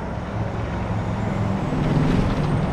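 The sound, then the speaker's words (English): A wave of traffic passing through downtown Loveland near Lincoln and Cleveland Avenues, wide, fast one-way streets: a steady wash of engines rumbling low and swelling slightly as vehicles go by, with no voices. “Every few minutes, a wave of traffic blows through.”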